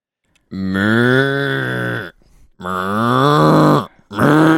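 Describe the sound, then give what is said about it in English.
A person imitates an angry cow with two long, loud, strained moos and the start of a third, each a sustained low harmonic bellow separated by brief pauses, delivered forcefully. “That's kind of a mad cow.”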